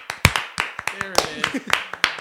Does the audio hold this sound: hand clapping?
yes